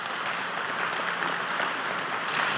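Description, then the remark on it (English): The audience of Connect Church applauds steadily after a speaker finishes, a dense wash of many hands clapping at an even, moderate loudness with no voices standing out. “And they won't applaud every week when you're done.”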